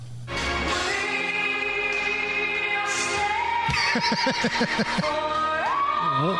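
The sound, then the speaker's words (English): Loud, distorted music blares from big loudspeakers mounted on top of cars in a siren battle in New Zealand, dense with sustained tones, then breaks into rapid pulsing, warbling siren-like sweeps that rise and fall over the steady wall of sound. “So these cars with these big speakers on the top, kind of like what the … had when they're driving through promoting their concert, they're blaring”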